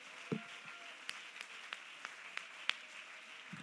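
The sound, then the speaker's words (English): An audience claps their hands in worship to God: steady, evenly spaced claps ring out over a soft, continuous wash of scattered applause. The whole sound is fairly quiet, and no one speaks. “If you feel that way, somebody clap your hands and give God worship.”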